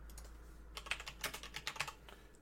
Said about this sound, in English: You're double clicking. No, I'm not. I'm clicking it once.